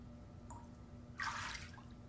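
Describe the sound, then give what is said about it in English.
Ice water sloshes briefly in a bathtub, a single soft splashing swirl lasting about half a second, with a faint drip before it and a low steady hum underneath. “All it takes is a tub of ice water”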